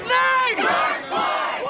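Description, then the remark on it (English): A crowd of protesters at 3rd and Pine in Long Beach chants and yells loudly together, some yelling into the faces of a line of police officers, many voices overlapping in rising, strained shouts with a rough, urgent rhythm, continuous. “I followed protesters, their chants, their anger, into the thick of the crowd.”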